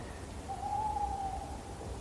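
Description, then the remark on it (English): A single drawn-out tawny owl hoot, a soft wavering note lasting about a second, over a steady low rumble of background noise, late in the year. “Owls, tawny owls, like to set up their territories in winter.”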